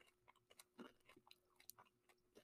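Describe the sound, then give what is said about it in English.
Crisp crunching of someone chewing a crunchy chocolate crunch bar during a taste test, with repeated sharp bites and crackles in an irregular rhythm, no talking. “Good amount of crunch.”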